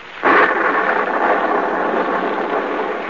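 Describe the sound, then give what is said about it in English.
A loud, steady roar of heavy rain and storm noise with lightning bursts in abruptly and continues unbroken and dense, with a rumbling thunderstorm quality and no voices, over a muddy road by a small stone courthouse in the southern village of Marsdenburg near midnight. “Gaze up this muddy, rain-splattered road. A small, lonely stone building appears against the lightning-streaked sky.”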